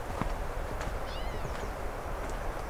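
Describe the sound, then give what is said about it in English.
A catbird, a little distant, gives a mewing, cat-like call, with thin wavering notes repeated a few times over steady outdoor background noise, no talking. “An actual meowing catbird.”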